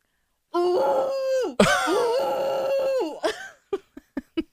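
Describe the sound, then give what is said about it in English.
A person imitates a bison call with two long, wavering, groaning bellows, the second rising and falling in pitch, followed by four short, clipped grunts. No words are spoken. “Now, why don't you imagine what sound a bison makes?”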